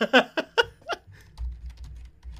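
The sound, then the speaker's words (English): A quick burst of giggling gives way to rapid, light clicks of typing on a computer keyboard, fairly faint, over a low rumbling background. “Y'all go hear my keyboard. I'm going to type the shit out of my keyboard like always.”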